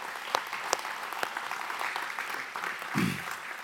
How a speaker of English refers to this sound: Let's give a round of applause to our worship team this morning. They just did a great job.